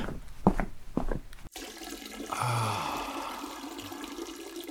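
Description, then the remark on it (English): A few short knocks, then a steady hissing stream of liquid splashing into toilet water as a man pees with the bathroom door left open, the pour staying fairly loud and continuous through the end. “How long is he gonna pee for?”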